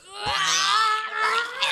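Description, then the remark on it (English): Adults let out a loud, sustained, high-pitched scream, wailing in imitation of crying babies during tummy time for nearly two seconds, with a brief rising strain at the end. “Dude, maybe if we scream as loud as we can, they'll pick us up.”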